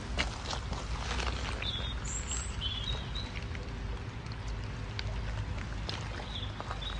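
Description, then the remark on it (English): A few faint, high bird chirps come and go outdoors near water, scattered over a steady, loud rushing wash of background noise that dominates the scene. “you can probably hear the birds, but I don't know if you can hear the water.”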